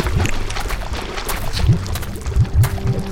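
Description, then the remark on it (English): Thick liquid sloshes and churns as Satan emerges from a burning river, with several heavy low surges and gurgles rising over a steady rushing, bubbling wash. “Satan began emerging from the burning river.”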